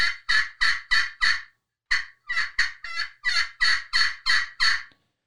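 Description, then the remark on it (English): Loud turkey yelping made with a turkey call, in two steady runs of raspy notes separated by a brief pause, with a few shorter, choppier clucks mixed in partway through. No one speaks. “And then it's gonna be, you know, some plain yelping, just with some clocks maybe.”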